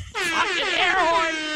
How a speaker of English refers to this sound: Fucking air horn.